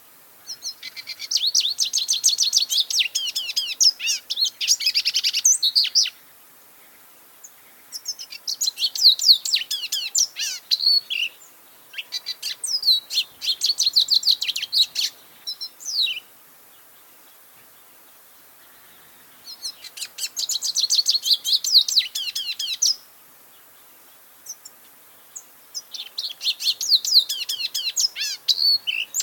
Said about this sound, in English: So our fifth bird is the lesser goldfinch. And this bird is small, beloved resident of the Southwest, the lesser goldfinch. So I want you to take a moment to find this beautiful bird in your ID guide as we play their song.